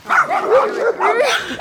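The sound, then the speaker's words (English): A dog barks in a quick, continuous run of high, yelping barks with whiny, sliding pitch, fairly loud and filling the whole moment. “Come on, the dog will follow.”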